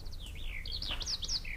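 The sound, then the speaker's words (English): A skylark in a jeweled cage sings a rapid run of bright, warbling chirps and whistled trills, clear, with a low steady rumble underneath and no talking. “In the cage, her pretty bird. It's a skylark.”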